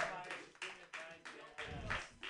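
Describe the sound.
Scattered audience clapping, a run of sharp, fairly loud bursts about every third of a second, with murmuring voices and cheering mixed underneath.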